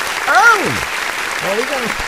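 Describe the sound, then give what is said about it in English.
A steady wash of applause sound effect runs throughout, with two short rising-and-falling vocal exclamations heard over it, one early and one near the end. “I don't know if you can hear the sound effects, because I'm giving it.”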